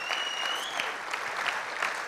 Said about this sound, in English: One more time, can we give all of our volunteers this morning a wonderful round of applause?